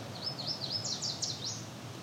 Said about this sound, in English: Yeah, that's definitely the yellow warbler version. It's very close, chestnut-sided.